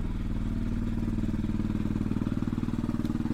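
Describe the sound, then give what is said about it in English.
A loud, rattling vehicle engine runs steadily, its rough, rapid pulsing and clattering knock continuing without a break and no voices over it. “That engine is too noisy.”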